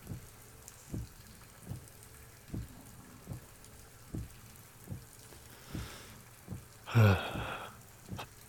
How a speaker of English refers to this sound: Goddamn rain. I'm freezing.